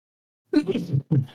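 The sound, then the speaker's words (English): A single loud sneeze after a moment of silence, with a voiced two-part burst: a sharp intake-like onset, then a forceful release and a brief trailing gasp. “I'm about to sneeze.”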